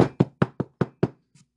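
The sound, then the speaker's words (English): A quick run of six firm knocks on a door at night, evenly spaced, followed after a short pause by one faint, softer tap. “Who's knocking at this time of night?”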